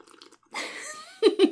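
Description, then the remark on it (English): A long, wet slurp of a tequila drink with a thin rising whistle through it, followed by two or three short, loud gulping bursts. “Slurping this is that so delicious fucking good.”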